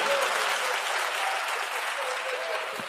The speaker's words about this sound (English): Oh, y'all ain't got, oh, can I get more, 10 more claps so we all won't look guilty.